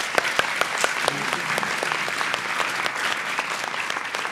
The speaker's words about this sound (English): Can we have a round of applause for our panelists, please?